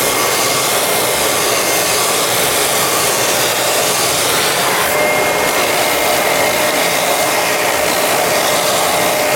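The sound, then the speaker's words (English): A power sander runs steadily against a skateboard deck, producing a loud, continuous whirring hiss with a gritty grinding edge that shifts slightly midway and never pauses; no one speaks. “I'm a good cutter, but I feel like I'm a good sander.”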